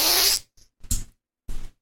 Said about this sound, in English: Your little farty little ass. Fart. I do not like your little farty ass, boy.